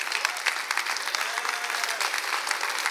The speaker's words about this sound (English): Stand up and give the Lord a round of applause, will you?